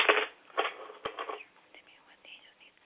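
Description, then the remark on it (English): Tarot cards being shuffled, a few quick papery riffling bursts with a sharp tap in the middle, then softer rustling that trails off. “So as I'm shuffling the cards, I'm going to call my angels into the room, and I'm going to ask them to reveal to my listeners what it is they need to know, okay?”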